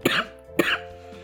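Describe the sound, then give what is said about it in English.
Two harsh coughs about half a second apart, each a sharp burst trailing into a raspy tail, with no talking around them. “This is going to take forever because of the coughing.”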